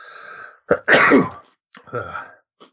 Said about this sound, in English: I'm going to sneeze.